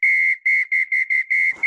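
A non-metal, pea-type teal duck call whistle used for waterfowl hunting, blown loud in about six quick, trilling blasts, each shrill note separated by a brief gap. No one speaks.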